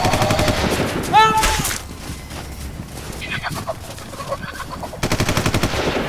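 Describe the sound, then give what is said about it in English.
Loud bursts of rapid gunfire aimed at a bird crack out at the start and again at the end, with a brief squawking bird call early on and muffled shouting voices in between. “On the bird! On the bird! Just shoot her!”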